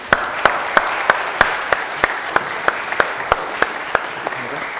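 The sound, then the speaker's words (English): An audience at a church service breaks into steady applause for a young girl being welcomed into the Christian community, a dense wash of many hands clapping with a few sharper, evenly spaced claps standing out, holding at a constant level throughout. “and I think we should give her a round of applause.”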